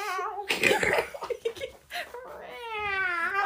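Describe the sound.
A voice does a drawn-out, wavering meow imitation of a stray cat, followed by a burst of laughter and excited chatter, then another long, whining mock meow at the end.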